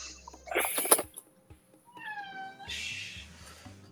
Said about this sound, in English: Yeah, sorry, there's going to be a wandering cat that just wanders in sometimes when I'm speaking. She's being a little loud today. She hears Daddy.